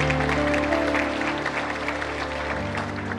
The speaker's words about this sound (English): But I hope you're not applauding because I'm giving the benediction.